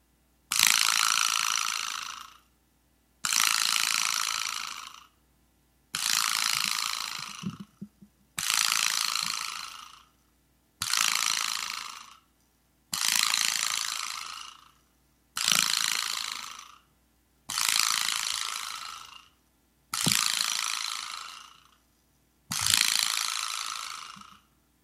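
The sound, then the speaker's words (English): The Dutch Hall's "great 10 slap rattle salute" honoring the life of their friend Braden: ten loud, harsh rattling bursts, each lasting about two seconds, separated by short even pauses in a steady rhythm. The clattering ratchet-like noise is bright and raspy, with no talking. “And before you watch this, we want to celebrate the life of our good friend Braden by saluting him the only way the Dutch Hall knows how, with the greatest honor we could ever bestow on a Nocturnal Emissions member, the great 10 slap rattle salute.”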